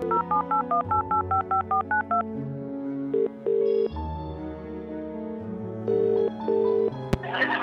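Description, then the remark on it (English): A rapid run of touch-tone beeps as a phone number is keyed in, about a dozen short paired tones, followed by a few longer tones over a low hum and a sharp click at the end. “I rang a few people I know in government to see where this is all going for Ireland.”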